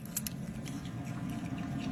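A small pet monkey wearing a diaper makes faint, squeaky mouse-like sounds: a few short, high chirps clustered near the start, then softer squeaks over a low, steady background hum, with no talking.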